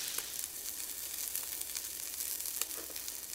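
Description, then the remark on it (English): Chicken broth with a little wine bubbles and sizzles steadily in a hot pan, reducing by about half: a continuous hiss dotted with quick little pops and crackles, with no voices over it. “Now at this point, it's just about cooking the liquid, letting it bubble up and reduce by about half.”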